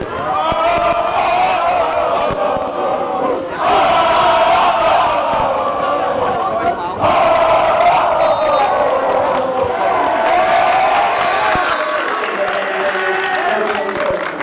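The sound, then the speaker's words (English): A student section at a basketball game chants a cheer in loud, sustained unison, voices rising and falling in rhythmic waves with brief breaks between phrases, over a busy roar of crowd noise. “And what is your favorite cheer for the student section? Let me show you.”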